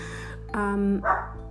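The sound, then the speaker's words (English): A dog gives a single short bark, with a brief harmonic yelp trailing into a softer huff; low background hum runs throughout and there is no talking. “Oh, sorry, dog's barking.”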